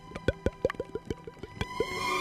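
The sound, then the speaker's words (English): A rapid series of hollow, wet plopping sounds, about a dozen in quick uneven rhythm, made by mouth to imitate dripping bath water, fairly quiet, with no talking. “It's so weird when you do the water noises.”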